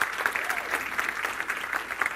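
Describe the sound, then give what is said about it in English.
A crowd claps steadily in a round of applause for a Christian movie producer, a dense, even patter of many hands with no pauses, holding at a moderate level throughout. “I want to give him a round of applause.”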